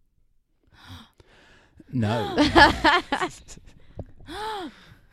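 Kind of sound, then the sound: human body sound, gasping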